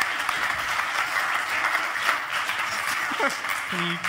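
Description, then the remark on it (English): A live audience applauds steadily, a dense wash of many hands clapping at once that stays loud and even throughout, with a brief voice surfacing near the end. “This is a round of applause”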